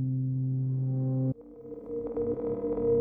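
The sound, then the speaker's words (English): A cell phone emergency alert tone going off on the way to the beach: a loud, steady, buzzing electronic tone that abruptly shifts after about a second into a wavering, higher warbling pattern that continues to the end, with no talking. “And as we were on our way to the beach, my cell phone went off with this warning.”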